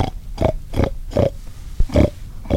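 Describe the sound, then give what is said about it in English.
A man's voice imitates pig oinks to lure a group of hogs closer during a hog hunt in the woods on a rainy day, a series of six or seven short, grunting snorts in a steady rhythm, loud with no other talk. “After zigzagging through the woods for more than an hour, they see a group of hogs, and he starts to make oinking noises to lure them closer.”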